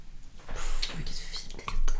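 A bottle of cava being opened: crinkly rustling and scraping of foil and cork, with light clinks of glass, moderately loud and continuous over two seconds, with no voices.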